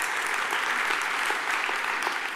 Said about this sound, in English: That's worth clapping, my sister.